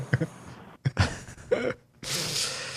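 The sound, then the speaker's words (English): Two people imitate snoring: a few quick, rough snorts and gasping inhales, then one long, loud, raspy exhale that carries to the end. “So yeah, it's us snoring.”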